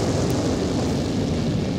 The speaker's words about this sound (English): Wow! That costume went up like it was flash paper! Well, they are always made out of highly flammable material.